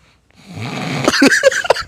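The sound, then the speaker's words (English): A voice imitates loud snoring and heavy breathing, like a food coma after heavy food: a rising wheezy inhale followed by several rough, snorting bursts over about two seconds. “Food heavy, coma. The heavy breathing cat.”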